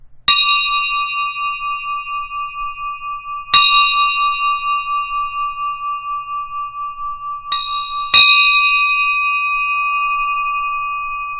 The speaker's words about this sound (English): One moment, please, while I grab the famous bell. Are you ready? Might want to cover your ears.